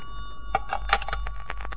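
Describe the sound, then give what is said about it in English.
A telephone rings with a bright, metallic bell tone, sounding in a quick series of rattling strikes over a faint steady hum, with no voices. “That's your phone.”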